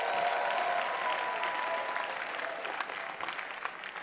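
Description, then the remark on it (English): An audience at a church program at Kasapa Park claps as a clap offering to the Lord, a steady, dense burst of applause lasting several seconds, loud and even throughout with no voices standing out. “Give the Lord a clap offering right here.”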